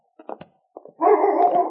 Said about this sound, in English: Suddenly, King's bark announced that he had found his quarry.